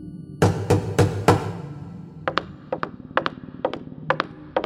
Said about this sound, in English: Yes, yes, enough with the knocking. Where is everyone?